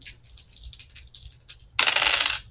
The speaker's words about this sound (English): So, speaking of which, somebody give me two dice. Give me the roll. Tell me what you got.